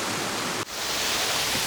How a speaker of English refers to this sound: Alright, climbing down to the foot of the waterfall. Oh, there's a lot of water floating around. Sort of spray.